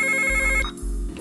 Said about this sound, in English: Yo, get the phone! Get the phone!